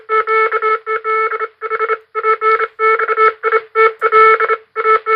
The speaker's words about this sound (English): Way back in 1838, Samuel Morse, you know, Morse code, right? Well, he demonstrated the telegraph for the first time. And you know what? We've got a clip here.